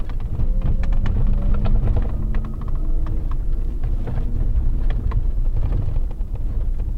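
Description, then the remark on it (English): A loud, steady roar from a supercharged 6.2 V8 engine, with a deep, rumbling, unruly exhaust and a thin supercharger whine riding over it, continuous, with crackles and pops scattered throughout. “You can hear the supercharger whine, but the exhaust is unruly.”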